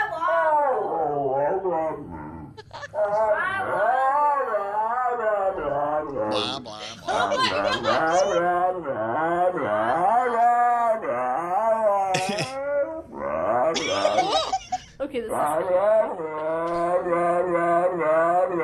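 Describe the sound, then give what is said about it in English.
A dog makes wavering, talk-like yowls and grumbles in quick back-and-forth bursts, rising and falling in pitch as it mimics its owner's speech, repeating him after he talks, mixed with a person's voice, loud and nearly continuous. “So we all have that friend that repeats you, like, you know, after you talk and they go, nah, nah, nah, nah, nah.”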